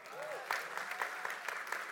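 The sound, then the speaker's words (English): An audience applauds steadily, a dense wash of hand claps with a few sharper, louder claps standing out over the continuous patter, no voices clearly heard. “Another hand of applause for everybody that's going to be out in the open.”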